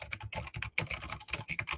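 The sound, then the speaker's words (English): Rapid, steady clatter of keys being typed on a computer keyboard, fairly loud, with quick uneven bursts of clicks and no voices, as someone writes a program in a code file. “So I'm going to type in some of the things in this program that I've been typing in the REPL.”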